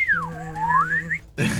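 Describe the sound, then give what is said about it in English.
A slide-whistle-like tone swoops down in pitch and then glides back up over a steady low hum, cutting off into a brief burst of hissy noise. “A slide whistle? Sounds like that, or I was thinking a Nerf vortex.”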